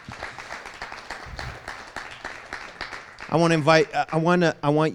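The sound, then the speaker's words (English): During a morning church service, an audience claps for God in a dense, steady patter of many hands for about three seconds, then the clapping fades as someone starts speaking loudly over it. “Would you give God a hand clap this morning?”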